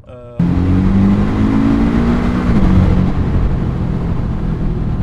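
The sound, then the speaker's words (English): A loud car engine roars, revving hard as it accelerates, the pitch climbing steadily then dropping into a sustained throaty drone with road rumble underneath. “So let's do some zooming now, innit, inshallah.”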